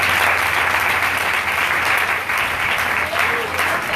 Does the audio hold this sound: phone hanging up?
no